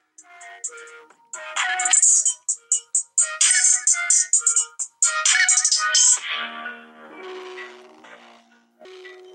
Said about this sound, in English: As much as anything, it's the way it's all distorted, and it sounds like someone playing loud music through a phone to you.